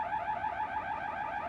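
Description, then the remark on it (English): A home security alarm panel next to a front door warbles loudly and continuously, its shrill tone rising and falling in quick, steady sweeps for the whole moment, with no voices present. “Next to the front door, the alarm panel waits. The blue rubber keypad glows beneath the flashing red quartz display.”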